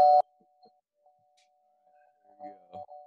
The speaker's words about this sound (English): I love the doorbell, man.